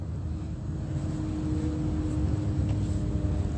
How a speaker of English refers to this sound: That's plane engines.